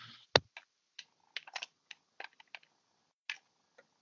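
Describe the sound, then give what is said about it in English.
Irregular bursts of crisp key clicks, like someone typing on a typewriter, with one sharp loud strike early on and a dozen lighter taps after it, heard alone without voices. “Sounds like someone's typing on a typewriter.”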